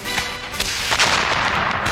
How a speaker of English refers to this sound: Welcome to the Rockefeller Center Salute to Fireworks. Now, without further ado, 3 hours of fireworks. Wait, fireworks? In Midtown? On a day that's not the 4th of July.